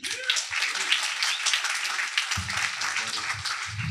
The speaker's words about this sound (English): And then our final October 2022 company, I want to welcome, and I'm going to ask you to applaud